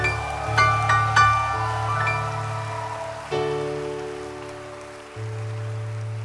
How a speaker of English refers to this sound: Show it with a beautiful hand clap.